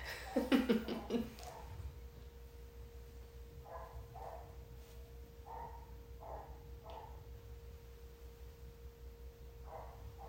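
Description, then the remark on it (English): A dog barks several times in a quick loud burst, then fainter scattered barks follow over a steady low hum. “Can you go make the dog shut up?”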